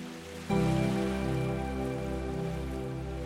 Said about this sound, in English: And you can hear the calming sounds of the ocean. And you can hear the waves as they gently come into the shore. Can you hear them? Can you hear those lovely waves?